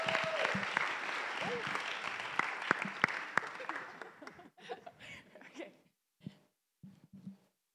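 An audience claps and cheers loudly for several seconds as an intern is called up to speak, then the applause thins out into scattered, fading claps near the end.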